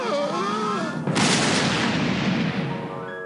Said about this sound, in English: How did you do that? You mean with the big comedy cannon?